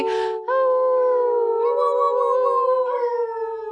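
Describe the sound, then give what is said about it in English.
People howl together in imitation of dogs, a sustained, wavering chorus of voices rising and sliding in pitch for several seconds, loud, with no talking. “How should we sign off? Should we just howl?”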